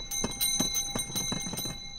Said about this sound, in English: There's probably nothing that says summer quite like this. Yep, it's the season when these ice cream cart bells ring out in Chicago sidewalks, parks, and beaches.